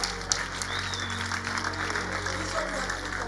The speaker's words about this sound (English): Don't worry. They will be clapping. You will be clapping for me when I'm talking about the women. So clap for me now.